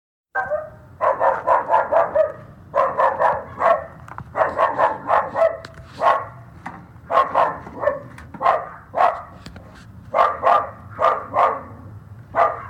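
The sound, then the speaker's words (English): A next-door neighbor's dog, about 20 feet away behind a fence, barks nonstop in quick clusters of sharp, harsh barks, loud, with barely a pause for the whole stretch and no voices. “Let me play a little clip of this dog and see what you guys think.”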